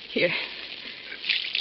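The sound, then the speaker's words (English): Water splashes from a glass onto someone's face: a hissing spatter lasting under two seconds, with a brief low vocal grunt near the start. “Is that water in that glass? Yes. Give me.”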